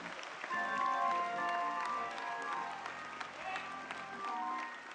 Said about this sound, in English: And let's give our pastor a round of applause, because his vision is about your children.